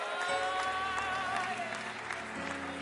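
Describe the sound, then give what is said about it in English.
An audience claps together in praise to the Lord, a dense, steady stream of applause, the many hands blending into a continuous patter over sustained musical tones that hum underneath. “Let's continue to clap to the Lord today and magnify Him.”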